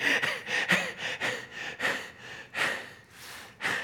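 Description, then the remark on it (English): A string of sharp, breathy gasps and heavy panting breaths, fairly loud, coming in quick irregular bursts with no talking, as Nebuchadnezzar wakes from a recurring dream with a gasp and sits up in bed. “And at the end, when the large comet strikes and everything explodes, with a gasp, he sits up in bed.”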